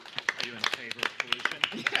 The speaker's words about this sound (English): Thanks for coming to Quizbox. Everyone give her a huge round of applause.